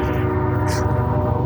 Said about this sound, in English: There's a train honking its horn.